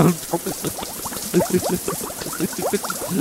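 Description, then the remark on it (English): A voice imitates a rush of water pouring down from a water tower when a lever is pulled, a continuous bubbling, gurgling splash of mouth sounds lasting a few seconds, fairly loud. “Are you sure you don't want more water?”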